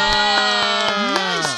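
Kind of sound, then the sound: crowd, audience applauding and cheering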